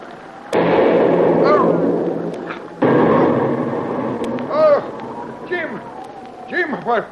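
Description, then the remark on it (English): Two heavy artillery shell blasts burst near a fleeing boat, each leaving a long roaring rumble, followed by indistinct shouting voices over the fading noise. “The concussion from that last shell knocked you down, that's all.”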